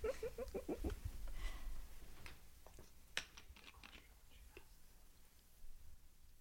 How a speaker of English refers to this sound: Yeah, let me sip some water. Hold on 1 second.